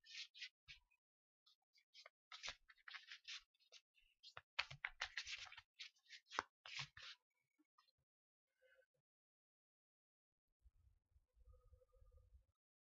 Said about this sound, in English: And as we breathe together, you can hear that I'm shuffling this card deck.